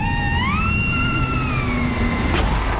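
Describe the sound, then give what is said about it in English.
A lawnmower engine drones steadily as someone cuts the grass outside, its whine rising in pitch early on and then holding a sustained buzzing tone, loud and continuous with no one talking. “Charlie is outside cutting the grass.”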